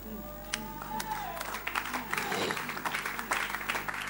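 An audience claps in a dense, steady patter of many hands for several seconds, with a brief murmur of voices near the start and a low hum underneath.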